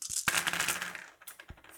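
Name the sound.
dice rolling and clattering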